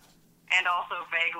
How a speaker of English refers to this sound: Like, who has that ringtone anymore?